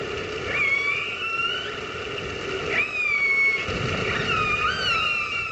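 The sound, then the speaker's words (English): Killer whales (orcas) call underwater, recorded with a hydrophone and broadcast live on the radio station Orca FM, run by Vancouver Aquarium in Canada: three drawn-out, squealing tonal calls that swoop upward and then hold, rising clearly above a constant hiss of hydrophone noise, with no voices. “No presenters, no music, just the sound of killer whales calling to each other.”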